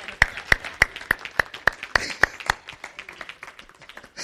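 Steady, rhythmic claps ring out loud about three times a second over a bed of scattered applause from a crowd, then the beat stops and softer clapping carries on.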